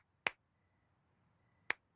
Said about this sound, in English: We don't have a clapper. Sorry, can't hear you, Marge. I'm clapping.